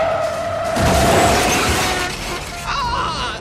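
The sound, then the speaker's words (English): A driver opens his car door and reverses into a bus to smash the door: a loud, sustained grinding crash of metal and breaking parts, followed by a shouted voice toward the end. “But I will always like wince at that bit where he opens the car door and then reverses into the bus so that he can smash the door.”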